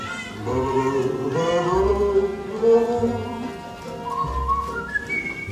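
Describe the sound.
A person whistles a sweet, bird-like tune in wavering, sliding notes over a steady musical accompaniment, the pitch climbing in quick upward chirps toward the end.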